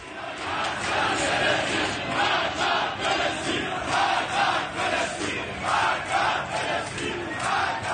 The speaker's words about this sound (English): Crowds in Iran were chanting yesterday, and what they are actually chanting is death to Palestine. Not a joke. Not death to Israel. Death to Palestine. Listen to this.